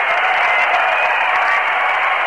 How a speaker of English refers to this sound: Crowd pouring out in the field. The Atlanta Braves disappearing in their dugout in the background. And the Met players now going into the clubhouse. Fans in the field trying to get home plate out. Trying to get the pitcher's mound.